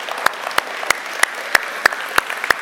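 An audience at a Mother's Day morning gathering applauds the moms, a dense wash of clapping with one person's sharp claps standing out in a steady, even rhythm. No one speaks.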